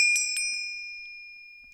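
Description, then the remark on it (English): A small bell is rung twice in quick succession as a transition, its bright metallic tone hanging on and slowly fading over the next second or so, with no voices around it. “I'll ring a bell for a transition here.”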